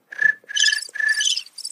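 sound effect, cricket chirping sound effect

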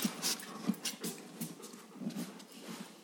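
animal, dog panting

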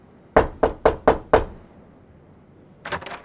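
impact, knocking on a door

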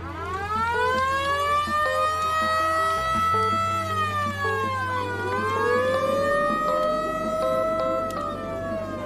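vehicle, fire truck sirens

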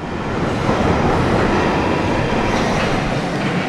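vehicle, london Underground train running

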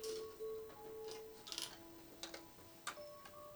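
household object, clock ticking

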